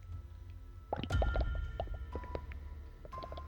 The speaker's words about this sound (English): A bubbling cauldron is seen in the middle of the room. Symbols are painted around it, and a small coffer sits close.